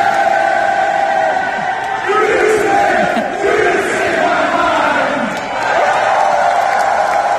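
A large wrestling-show crowd at Canada Life Centre in Winnipeg cheers and chants continuously after the music stops, a loud sustained roar with rising and falling voices and chanted tones, steady throughout with no pause.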